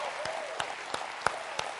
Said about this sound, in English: On the count of three. One, we're going to give God a robust round of applause. Two, three. Let's do it.